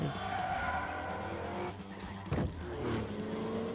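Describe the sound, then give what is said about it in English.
A race car, Dominic's car in a film, launches off the line in a wheelie, its engine roaring loudly while its tires squeal and skid, the sound continuous for several seconds with a sharp burst of noise partway through. “I like the wheelie, Dominic's wheelie off the line.”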